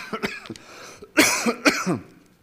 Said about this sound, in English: if I don't stop coughing, Andrew, you may have to pick up and preach the rest of my sermon